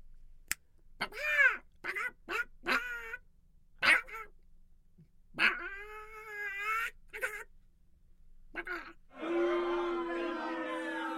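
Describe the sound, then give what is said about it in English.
A person imitates a chicken in a radio comedy act called The Hypnotist, letting out a run of short, squawky clucks, then longer drawn-out cackles, ending in a sustained, strained squawk. “When I click my fingers, you will think you are a chicken.”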